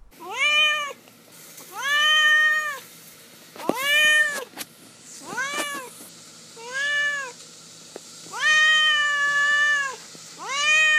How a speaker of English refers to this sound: let's turn now to Duarte's Corner, where we give my cat Duarte a small moment to share his thoughts and opinions about the book.